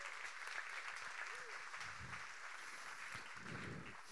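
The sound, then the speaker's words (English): An audience applauds steadily during a pastor's sermon, a dense wash of many hands clapping at once, sustained and fairly loud throughout with a few murmured voices underneath. “Put your hands together. Give him a applause.”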